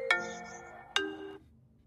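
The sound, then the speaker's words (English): A phone ringtone for an incoming call: two bright electronic chime notes, the second about a second after the first, each ringing out and fading, heard clearly and alone with no talking. “Hey, sorry, I'm on a phone call.”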